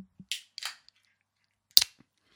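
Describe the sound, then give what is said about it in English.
Sharp metallic pops of drink cans being cracked open, each followed by a brief fizzing hiss: two quick openings in succession, then a louder, crisper crack after a pause, with no talking. “Right, cheers, right. You're lethal, boy. Here we crack these.”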